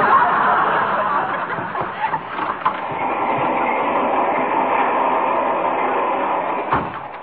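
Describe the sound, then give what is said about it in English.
A fast-moving train rumbles steadily on its rails, a loud, continuous rushing roar broken by a few scattered knocks and clacks, with no one speaking. “Besides, I wouldn't want a barber fooling around with me with a razor on a train this fast.”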